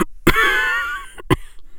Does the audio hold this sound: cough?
yes